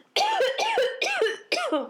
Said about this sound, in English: is coughing again.